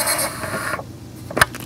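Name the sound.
telephone ringing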